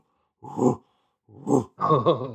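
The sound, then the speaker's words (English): A person imitates the grunts of unseen bears heard beyond grazing deer near a camp, with three low, throaty grunts: two short huffs separated by pauses, then a longer, rougher rumbling grunt, all fairly loud with no other sounds. “Oh, and the deer like poke up their heads and look around, and I'm like, and there's bears around there. I didn't see them, but I heard them.”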